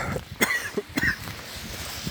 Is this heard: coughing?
yes